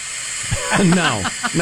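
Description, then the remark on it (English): A hair dryer blows with a steady, bright rushing hiss that holds an even level from start to finish, while a voice murmurs briefly over it partway through. “My hair's a mess, so I turn on my hair dryer.”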